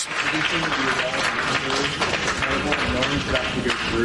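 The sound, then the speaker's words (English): Sustained applause fills a Senate Judiciary Committee hearing room, a dense steady wash of clapping from many hands, with a voice speaking faintly underneath throughout as the Meta CEO apologizes to families. “Between the applause and the quality of that recording, it was hard to hear, but he did indicate saying, I'm sorry about what your families have gone through, what you've gone through, and what families have suffered.”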